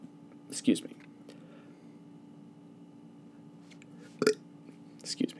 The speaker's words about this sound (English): Excuse me. Okay. Fucking stop. I got angry burps now.